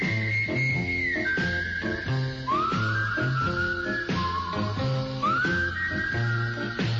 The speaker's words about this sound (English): He did the whistling on this record.